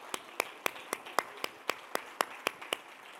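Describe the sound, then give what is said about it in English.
A church audience stands and claps hands in praise of God, in steady unison, about a dozen sharp, crisp claps at a quick, even beat, with a soft wash of background noise and no talking. “Oh, come on, clap your hands and praise Him.”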